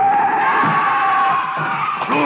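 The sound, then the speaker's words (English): A loud, sustained tire skid screeches as a car speeds at a man running out into the street, trying to hit him: a steady high squeal with wavering tones lasting a couple of seconds, with a faint rumble of engine beneath it. “He is running out into the street. The car. They're trying to hit him.”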